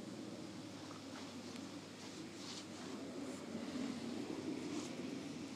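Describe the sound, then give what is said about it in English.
A steady breeze blows outdoors, a continuous airy rush with a low rumbling undertone as gusts brush the microphone, swelling slightly near the end. No one speaks. “This fresh breeze.”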